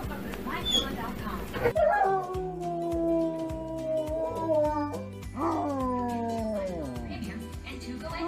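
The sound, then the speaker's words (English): Dogs howl in long, wavering tones that slide downward, one drawn-out howl after another over a low, steady background, loud, in a MyPillow dog bed advertisement. “as you see, the dogs love it. They asked, and here they are.”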